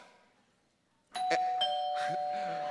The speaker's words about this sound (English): He drives up to your house. He rings the doorbell.